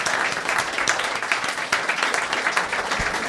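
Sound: audience applause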